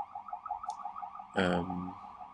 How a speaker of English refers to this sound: Dude, let him through. These cars are just not trying to let this ambulance through.